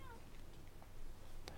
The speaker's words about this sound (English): Please be quiet, kitty cat.